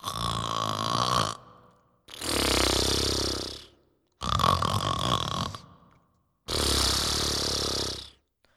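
Four loud, rasping snores in a slow, steady rhythm, each lasting over a second with brief silences between, sounding like a person imitating snoring.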